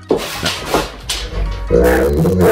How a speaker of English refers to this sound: This is based on the clip we had yesterday of the dog that supposedly can talk.